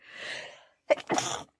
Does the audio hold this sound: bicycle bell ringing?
no